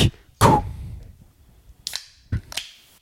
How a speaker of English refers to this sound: pick out a little beverage. Hold on, let me open it. I wanted to start it with that sound.